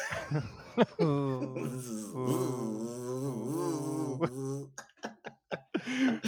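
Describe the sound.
A voice imitates a mosquito's buzz, a steady, wavering nasal drone held for several seconds, then breaks into short clicks and a brief burst of laughing voices.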